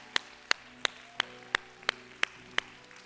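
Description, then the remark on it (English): Quiet, polite golf claps from the women in an audience, honoring the men: about eight sparse, evenly spaced claps at a slow, steady pace. They sound thin and subdued against a faint background hum, with no voices. “Y'all got to take it up a notch. Y'all are giving them golf clan claps.”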